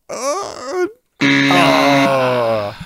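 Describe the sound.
A voice imitates a bear's roar, as a quiz guess at the animal sound Brownies make to welcome special visitors: a wavering, moaning growl, a brief pause, then a longer, loud, sustained groaning roar that tapers off at the end.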